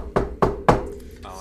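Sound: knocking on a door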